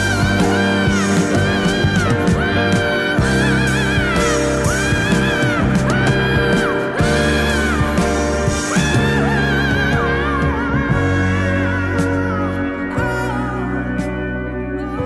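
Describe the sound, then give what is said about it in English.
A woman's high, wordless screaming vocal in a 1973 recording wails and swoops in long sustained glides over a full, loud band, continuing throughout with no spoken words. “That was … doing that high screaming”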